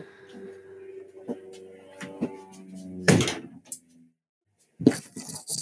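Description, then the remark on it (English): A shed door swings shut with one solid bang after some shuffling and rattling. Underneath, a Spitfire aeroplane flying above the shed hums with a low steady engine drone. A few scrapes follow. “Let me just shut the door.”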